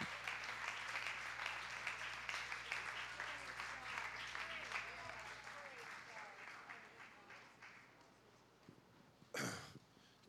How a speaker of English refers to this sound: But for them and for all of our guests that are here today, can we just give all of our guests a hand clap of appreciation?